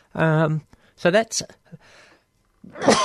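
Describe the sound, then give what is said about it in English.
A loud sneeze bursts out after a drawn-out voiced wind-up, with a breathy, noisy sound trailing at the end; no one talks. “Where's that sneeze button when we need it?”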